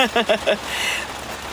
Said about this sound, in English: It's pouring. Oh my god, it is pouring.